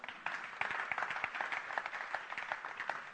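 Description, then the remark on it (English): An audience claps steadily, many hands forming a dense patter of sharp slaps that holds at an even, moderate level throughout, with no one speaking. “Amen. You can clap for that.”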